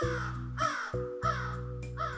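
A crow caws three times at a steady, evenly spaced pace, the harsh calls fairly loud over a sustained low droning tone underneath.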